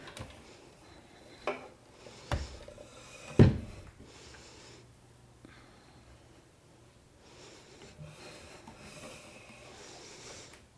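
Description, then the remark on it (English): A chair is set in place for an exercise demonstration of a kneeling lunge, with a few short knocks and scrapes, ending in one louder, solid thud, followed by a low, steady background hum with no talking. “So I'm going to put the chair here.”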